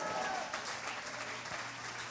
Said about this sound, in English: Oh, clap your hands unto the Lord.